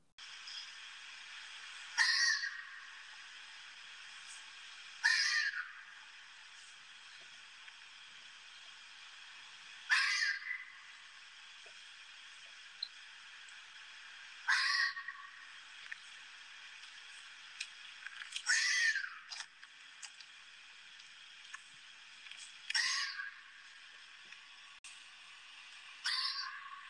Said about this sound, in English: And this is where, if you don't know what's happening and you're just sitting outside on your back porch or you're camping out and you hear this calling from down by the creek, this is where you start paying attention, folks. So here is a fox.